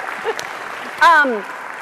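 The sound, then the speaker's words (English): Scattered morning applause from a small group for the announcement of two new Technology Modernization Fund awards gives a steady, crackly patter, and a single voice breaks in briefly with a drawn-out exclamation that slides down in pitch. “And that I'm going to clap, because even if y'all aren't, come on, it's morning.”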